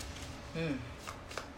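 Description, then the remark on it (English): Tarot cards being shuffled, a soft papery riffle with a few quick snapping bursts, while a voice briefly murmurs partway through. “I think one flipped over.”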